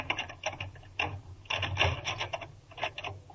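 A key scrapes and rattles in a door lock, a series of short rasping, clicking bursts over a few seconds, fairly quiet with no voices.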